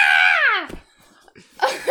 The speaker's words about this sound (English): Sorry for screaming a lot, listeners, but this is like one of my favorite things ever.